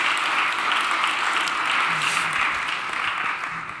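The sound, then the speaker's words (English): A crowd applauds steadily to welcome the introduced guests, a dense wash of many hands clapping at a fairly even loudness throughout, tapering slightly at the very end. “So welcome all of you, and one more round of applause.”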